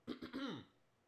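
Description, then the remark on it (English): A fairly loud cough: two quick rough bursts followed by a longer voiced, throaty hack that trails off into quiet. No one speaks. “And then, as a matter of fact, I've read and seen reports that apparently, hold on, I got a cough.”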